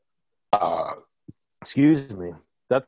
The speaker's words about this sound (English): We're about to do some ASMR and now I'm belching all over the place. That's not my sound effect, I promise.